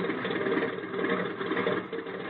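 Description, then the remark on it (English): A small plane's engine drones steadily as the plane turns around and taxis, a continuous buzzing hum with a slight pulsing texture and no voices over it. “Hey, you're turning the plane around. Certainly. Now we taxi.”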